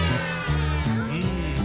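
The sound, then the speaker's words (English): A child's voice imitates a cat during a song about a cat that came back, drawing out a loud, sustained meow with rising and falling pitch, sung over a steady musical backing of harmonic tones. “Give me a meow, go.”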